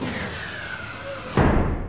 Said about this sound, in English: The door in front of Emma slid open.